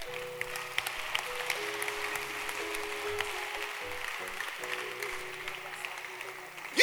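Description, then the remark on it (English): An audience claps for Jesus steadily for several seconds, a dense, even patter of many hands, with a faint low hum running underneath. “Clap for Jesus.”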